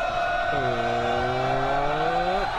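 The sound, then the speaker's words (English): A brief comedy jingle built around a revving car engine: a sustained droning hum joined by a deeper engine note that climbs slowly in pitch before cutting off. No one speaks. “Doesn't really feel like that comedy jingle really fits in with the tone of this discussion.”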